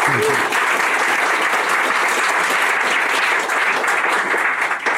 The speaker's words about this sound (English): So please join me in a round of applause for Dan.